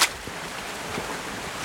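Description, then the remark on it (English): A small, unnamed stream with a waterfall flows close by beside a public footpath with a steady, continuous rushing and babbling wash of water, fairly even in loudness throughout, with no voices over it. “You can really hear the stream beside me.”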